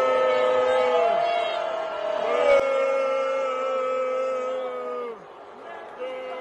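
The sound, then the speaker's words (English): A large crowd boos loudly, many voices overlapping in long, drawn-out tones that sag downward in pitch, with some people clapping, then the noise thins briefly before swelling again near the end. “I'm going to play it again, and then you would definitely hear the rest of the crowd booing.”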